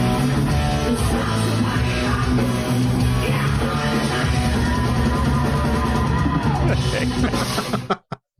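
A loud live band in Ho Chi Minh City plays a heavy metal cover, with dense distorted guitars, pounding drums and a shouted vocal over the top, before the music cuts off abruptly near the end.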